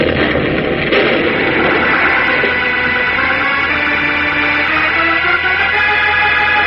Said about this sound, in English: As Superman wrenches the control dial from the rock wall, a terrific explosion, seeming to start somewhere deep inside the massive concrete oven on which the globe stood, erupts and blows the entire peak of the mountain toward the sky,